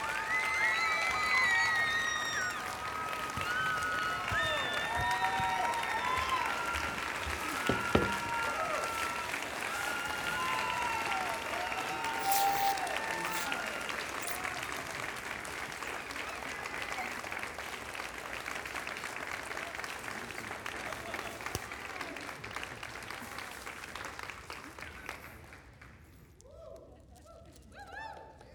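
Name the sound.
audience applause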